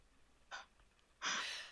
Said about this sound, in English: Excuse me while I freaking yawn.